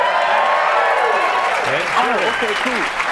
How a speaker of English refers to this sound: Are those real people clapping? They are. No, they're real people.